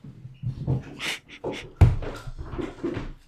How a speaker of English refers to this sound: Oh my God, my cats are fighting. Hold on.